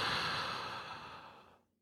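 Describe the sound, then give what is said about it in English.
One long, deep breath drawn in as a breathing exercise, a breathy rush of air that holds steady and then fades out near the end, with no talking. “Deep breath in.”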